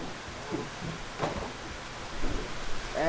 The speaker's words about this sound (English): And here comes the rain.